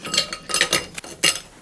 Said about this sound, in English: So the next step is to get some ice in this glass. All right. Now, you want to just fill the ice up all the way.